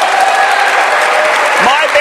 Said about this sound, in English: Yes, let's cheer for that.